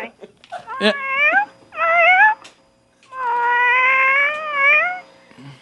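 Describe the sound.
A cat meows loudly three times: a short yowl, a second plaintive meow, then a long, drawn-out wailing meow, with brief pauses between.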